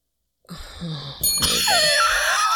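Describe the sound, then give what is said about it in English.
A bright bell rings out, struck twice in quick succession, its shimmering tone sustaining loudly to the end after a brief low murmur at the start. “You maybe lose my train of thought since you demanded a bell on BLTs.”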